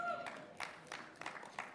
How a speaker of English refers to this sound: Thank you for those five claps.